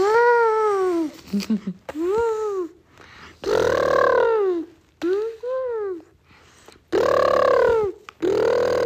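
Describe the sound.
A child's voice makes a series of loud, drawn-out trumpeting and groaning calls, rising and falling in pitch, imitating an elephant, with short pauses between bursts.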